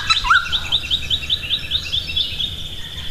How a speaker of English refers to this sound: but what is that bird that sounds like a songbird with the hiccups? I think it's a noisy fryer bird. Called a noisy fryer bird because it's noisy and it has a completely bald head.